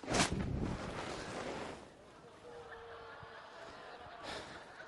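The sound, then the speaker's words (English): A sudden rushing burst of soap bubbles from soapy water rapidly expanding in a bubble explosion, settling into a steady bubbling, fizzing hiss that swells again near the end. The sound is fairly quiet and no one speaks over it. “Bubbles. Lots and lots of bubbles. They're just soap bubbles, that's all they are.”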